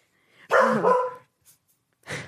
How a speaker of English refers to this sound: Sorry, my dog is barking. I don't mean that. What did you say? Relax. My puppy, she's barking. I don't know if you can hear it, but I'm sorry about that.